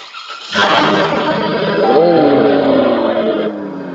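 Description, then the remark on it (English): A supercharged car engine with a Bora ATAK exhaust fires up about half a second in and settles into a loud, steady roar, with a brief rising whine swelling over the rumble partway through. “I want to hear that supercharger. Can you start the car?”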